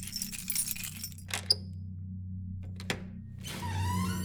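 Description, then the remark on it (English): Keys jingle, then a sharp metallic click as a key unlocks a display case holding a blade, followed by a scraping, sliding rumble as its heavy glass is raised open by a person in black latex gloves, over a low steady hum. “I put on a pair of black latex gloves and then strolled over to the case, unlocking it and dramatically raising the glass.”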